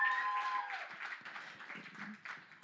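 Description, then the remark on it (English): A church audience claps steadily in a dense, continuous patter for a few seconds as a couple is called up. A brief high tone like a whistle or cheer rises at the start, then the applause carries on alone. “Come on, keep clapping, keep clapping.”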